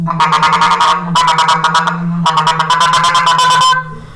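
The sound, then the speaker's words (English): A goose call blown loud and fast as a feeder call: three bursts of rapid, chattering honks run together in a feeding-style series, imitating excited geese signalling there is food, with no talking. “And then there's another call called the feeder, and it's like,”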